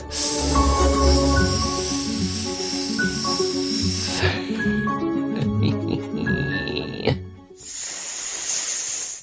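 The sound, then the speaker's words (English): Upbeat music plays, then stops, and voices let out one long, steady snake-like hiss for over a second, imitating a snake as part of an activity. “Let's hear your longest hiss.”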